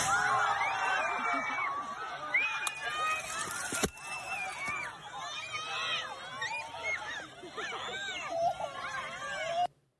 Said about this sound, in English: Dude, they have a what's known as a candy cannon, I guess. Yeah. And instead of filling it with, like, softer chocolates, they put Starbursts in there.